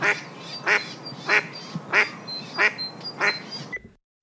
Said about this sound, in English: This was a duck. Easy peasy. But you know what? This specific sound of a mother mallard duck calling to her chicks is going to be very crucial in just a few moments.